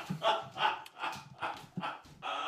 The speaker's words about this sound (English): I'm going to murder that dog. I'm not even joking.